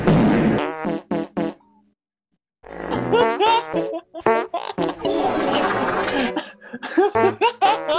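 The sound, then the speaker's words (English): Fart sounds played from an online video: a run of loud, wet-sounding farts in quick succession, some drawn out and some short bursts, with a brief pause in the middle before they start up again. “We fart channel.”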